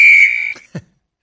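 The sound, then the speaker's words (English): A single loud, shrill whistle blast held for about half a second, then cut off, followed by a brief low throaty burst and silence. “You official like a referee with a whistle.”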